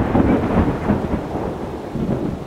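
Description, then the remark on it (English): Heavy rain pours down steadily while a deep, rolling rumble of thunder fills the low end, loud, with no voices present. “Once Noah finishes the ship, God seals the doors, and the rain begins.”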